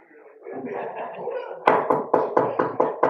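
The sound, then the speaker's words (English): A murmur of background activity gives way to a series of six sharp, evenly spaced knocks on a door, loud, striking in a steady insistent rhythm. “I wish they would quit knocking.”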